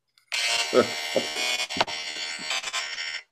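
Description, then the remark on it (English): A phone alarm, going off with the phone's sound turned off, buzzes steadily for about three seconds, a harsh continuous electronic drone, with a few brief, muffled vocal sounds underneath. “Apparently, the sound off, the alarms still go off on your phone.”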